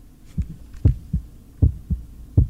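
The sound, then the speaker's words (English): A steady heartbeat thumps in paired lub-dub beats, about three pairs over a couple of seconds, low with a soft hum underneath and no voices. “So it's just more heartbeat, that's all it is.”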